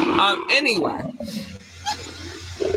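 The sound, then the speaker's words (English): A man's voice growls out a loud, rasping imitation of a big cat's roar, in a few rough, rising and falling bursts. “I feel like, should it be the purr or the roar?”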